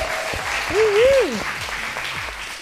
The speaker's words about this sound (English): And they are celebrating this huge milestone in her life. So we're going to cheer right there, audience. That's some good news.